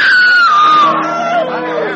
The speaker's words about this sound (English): Suddenly, a woman screams.